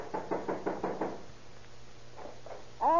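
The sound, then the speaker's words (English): Police officers knock on a suspect's apartment door in Oakland: a rapid series of about six heavy, loud knocks, then a pause and two fainter raps before a voice begins speaking at the end. “Better try knocking, Stone.”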